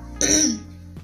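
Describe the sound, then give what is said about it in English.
A single raspy throat clearing, brief and fairly loud, with no talking around it. “It's like I have to keep clearing my throat.”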